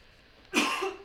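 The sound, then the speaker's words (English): A single harsh cough bursts out after a moment of quiet room tone, with a brief second rasp at the very end. “I have to cough, so let me mark this time.”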